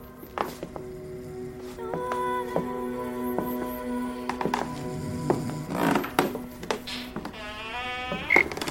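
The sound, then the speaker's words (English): Slow, uneven footsteps on creaky wooden boards, each dull thump joined by long, wavering groans and squeaks from the wood, with a higher, sharper creak near the end. “Creaky board footsteps.”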